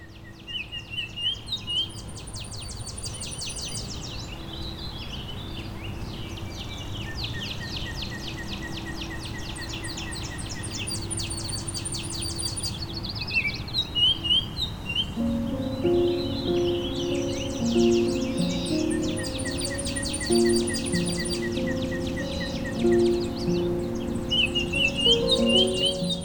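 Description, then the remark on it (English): A Tennessee warbler sings rapid, dry staccato chips in accelerating series, repeated several times over a steady backdrop of insects and other birds, with another bird's clear whistled notes entering partway through. “Tennessee warbler is a small, drab warbler with a thinly pointed bill and a short tail.”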